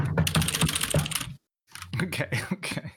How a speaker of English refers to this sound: You guys really type softly, huh? You can show your real keyboard. This is a main keyboard.